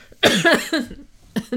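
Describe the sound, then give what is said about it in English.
A loud fit of coughing: a rapid cluster of harsh coughs, a brief pause, then two more quick coughs. No talking. “they were not causing me to cough.”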